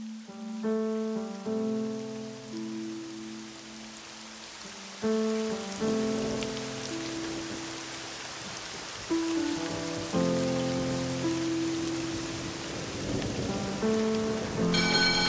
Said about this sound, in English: That's when I looked up. It has started to rain.